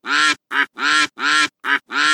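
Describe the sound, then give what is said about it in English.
Six loud, nasal duck quacks in quick succession, alternating longer and shorter calls, a human voice imitating a duck: a girl who can only quack when she tries to speak, with no talking around them. “She was quacking, just like a duck.”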